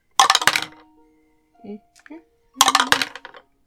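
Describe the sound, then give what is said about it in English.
Real dice clatter and tumble across a hard surface in two short, bright rattling bursts, rolled for an investigation check with advantage, with a faint murmur in the pause between them. “I will use real dice.”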